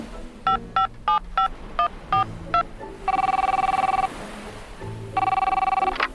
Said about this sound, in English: And there's the Whale of a Tale phone. I'll handle this.